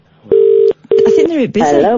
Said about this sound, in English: I'm ringing Blackhall Colliery.